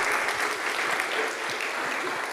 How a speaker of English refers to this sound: I'm going to invite the wonderful Clare Thompson to come on up. Let's have a big round of applause for Clare, please.